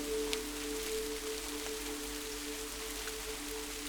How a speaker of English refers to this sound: As you listen to the rain, you gently smile and feel a sense of joy as you realize this sound is so much more than you had ever thought it had been before.